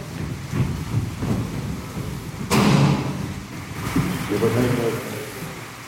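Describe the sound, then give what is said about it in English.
A heavy hailstone shower drums steadily on the tin roof of a long, narrow building in rural Donegal on a stormy November night, a dense, rattling roar swelling into a sudden louder burst partway through, with indistinct voices faintly underneath. “A heavy hailstone shower beats off the tin roof of a long, narrow building in rural Donegal.”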